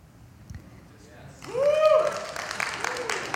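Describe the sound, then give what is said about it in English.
A crowd bursts into cheering and applause after a brief quiet lead-in, with loud voices whooping over steady clapping that carries on to the end. “That was to cheer.”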